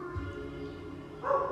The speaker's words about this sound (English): Damn, boy. That barking making my podcast sound ghetto. Stop! Hey. No. Yeah, we got pit bulls barking, pregnant.